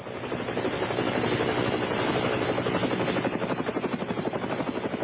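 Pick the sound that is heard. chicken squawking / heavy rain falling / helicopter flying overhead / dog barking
helicopter flying overhead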